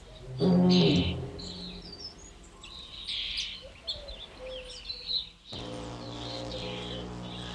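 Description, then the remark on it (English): Birds sing in a garden, with a scatter of bright, high chirps and short trills repeating throughout, over a low droning hum that swells at the start and again near the end. “Birds and Bees”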